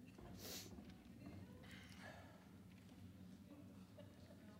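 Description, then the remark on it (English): A rush of many quick footsteps as children run out of the room after being dismissed, thumping across a floor like a small stampede, steady and busy throughout, with murmured voices mixed in. “Stampede of footsteps.”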